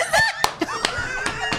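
A handful of sharp, scattered claps from an audience doing a soul clap, loose and slightly uneven in rhythm, with a murmur of voices and higher vocal tones underneath.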